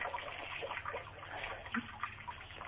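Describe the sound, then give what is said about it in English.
A steady stream of liquid splashes continuously, a person urinating while on a phone call, a thin hissing trickle with small uneven bursts, heard through a narrow, tinny channel with no talking. “Can you hear me urinating right now?”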